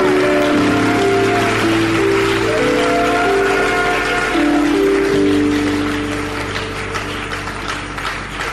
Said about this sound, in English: Give the Lord a mighty clap and praise.